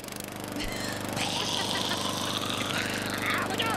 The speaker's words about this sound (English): A lawnmower.